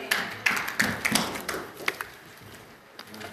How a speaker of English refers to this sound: Can we give Jesus applause? Amen.